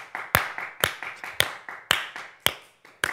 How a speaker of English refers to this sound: Moment of appreciation. A round of applause.